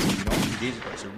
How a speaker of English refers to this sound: Got a couple gunshots. Yeah.